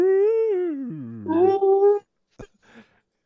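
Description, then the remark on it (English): Voices imitate whale calls with long, wavering moans that glide up and down in pitch, two overlapping for a moment. They cut off after two seconds, followed by a brief knock. “Everyone starts making whale noises.”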